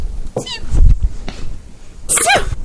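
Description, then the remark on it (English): A tiny, sharp sneeze bursts out near the end, following an earlier small squeaky sound, both brief with faint background noise between them and no talking. “Tiny little sweet sneeze.”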